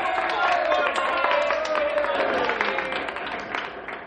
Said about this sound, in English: Now that the two top candidates have been named, please wait until I finish naming the other young people before applauding.